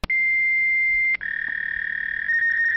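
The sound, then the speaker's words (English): A lightning-round sound effect plays alone: a loud, steady high-pitched electronic tone that breaks off briefly after about a second, then resumes with a slightly wavering, buzzy edge until the end. “Cue lightning sound effect.”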